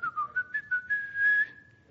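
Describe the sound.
Someone whistles a short tune up close: a few quick rising and falling notes, then a longer held note that fades out, with no talking.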